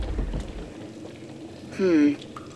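Water rushes and bubbles steadily into a tunnel, a low, churning wash of liquid pouring in, with a brief louder tonal groan breaking through near the end.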